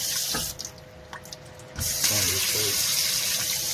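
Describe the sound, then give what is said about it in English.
Running tap water splashes steadily into a sink, starting with a few brief spurts before a continuous stream pours and rinses a filleted fish in clean water, with faint handling noises and a low hum. “This one's already filleted open right here. You can see all the junk and everything else in that. So, take it in clean water.”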